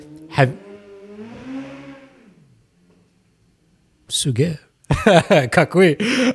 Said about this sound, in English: You guys probably couldn't hear that. I was just realizing. Maybe you did. There's a super loud motorbike, like a super bike just went by. A Kawasaki 9000. Anyways, I don't know if that's actually what it was, but.